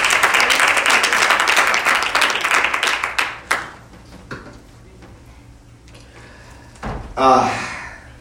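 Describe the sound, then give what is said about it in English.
A crowd claps loudly in a dense burst of applause that fades out after about three seconds, followed by scattered knocks and a brief voice. “Clap your hands like you believe God.”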